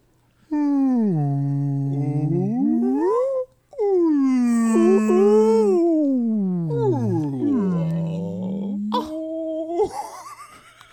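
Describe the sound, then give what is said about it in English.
A human voice imitates whale calls with long, gliding moans that swoop low and rise again in drawn-out, wavering tones, ending with a short higher squeal. The sounds are loud, with no speech. “Whale talk. Whale talk. Whale talk. Whale talk.”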